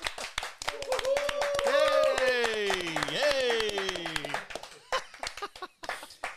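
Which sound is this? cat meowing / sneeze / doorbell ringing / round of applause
round of applause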